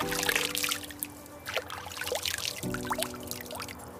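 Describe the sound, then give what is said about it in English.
Water pours and trickles steadily for several seconds, fairly loud, with splashy bubbling bursts and a low sustained tone humming faintly underneath. “With water that's wet.”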